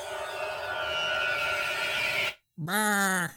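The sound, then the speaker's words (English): A loud voice lets out a long, quavering evil laugh that bleats like a sheep, then after a brief pause a shorter wavering burst follows. “It sounds like an evil sheep.”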